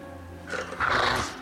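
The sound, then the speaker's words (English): A dog growls and snarls, a loud, rough, aggressive outburst that swells after a short quiet lead-in and holds for about a second. “Dog!”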